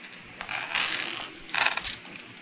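Dice clatter and rattle across a hard surface in two bursts, a first tumble followed by a brighter, louder scatter, with no talking, as the dice are rolled for a damage roll in a game.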